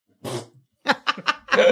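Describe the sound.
A voice blows a wet, raspberry-like victory fart noise after winning a game of rock, paper, scissors: one noisy burst, a short pause, then a quick string of sputtering pops ending in a longer, buzzing tone. Fairly loud.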